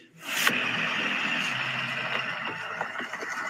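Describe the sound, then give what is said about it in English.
A truck engine drones steadily while driving, a continuous rumbling hiss of motor and road noise that starts with a brief burst and holds at a fairly loud, even level throughout. “Now, he's driving the truck.”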